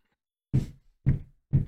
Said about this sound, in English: I'm being really distracted because I just keep hearing knocking from upstairs and I don't know why.